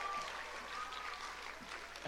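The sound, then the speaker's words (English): An audience applauds steadily for the poets who shared that night, a dense, even wash of many hands clapping at once, sustained at a fairly constant level for the whole couple of seconds with no voices standing out. “Can we give one more round of applause to all these poets who shared tonight?”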